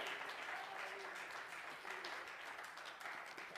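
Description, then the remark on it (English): A church audience claps steadily in praise of God during a morning sermon. It is a dense wash of many hands applauding at once, fairly loud and sustained throughout with no clear individual beats, and faint voices mixed in. “If you believe that this morning, clap your hands and praise Him.”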